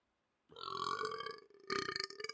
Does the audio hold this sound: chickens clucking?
no